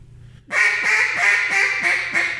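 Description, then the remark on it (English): A duck call blows a steady, rapid run of about eight loud, nasal hen-duck quacks as a fine hen call, each note evenly spaced with no talking over them. “Do a fine hen.”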